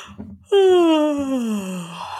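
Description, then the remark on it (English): A single long, drawn-out human yawn, fairly loud, its voiced tone sliding slowly downward for nearly two seconds after a brief breathy intake, with no talking. “I hope you're not driving and yawning and tearing up and have mascara running down your face or signing off.”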